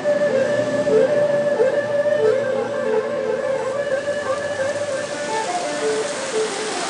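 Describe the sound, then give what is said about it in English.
Heavy rain from a torrential thunderstorm in Hong Kong, along Hollywood Road, pours down in a dense, unbroken hiss that holds steady for the whole stretch, with a faint tonal hum running underneath and no voices. “I've been caught in the most torrential thunderstorm here in Hong Kong.”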